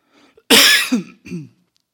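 A loud throat clearing while taking a cough drop: one harsh burst that trails into a voiced rasp, then a shorter second clearing, followed by quiet.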